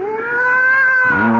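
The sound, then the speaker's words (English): A fat, sleek cat lets out a long, loud, drawn-out yowl that holds steady and then bends downward at the end, with no talking. “Oh, I'd forgotten that mewing, spewing cat.”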